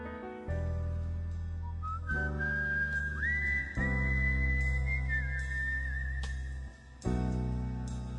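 A whistled melody rides over a full band in a song, the bright whistle line holding long sustained notes with slides above steady bass and drums at a fairly loud, even level.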